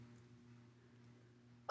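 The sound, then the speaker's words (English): A single sharp sneeze bursts out suddenly and loudly at the very end, after a stretch of near silence with a faint low hum. “Oh god. God bless you.”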